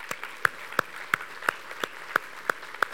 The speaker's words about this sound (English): How about we applaud how the Lord has used our worship leaders today?